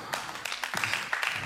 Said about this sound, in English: Come on, you're clapping like you need deliverance.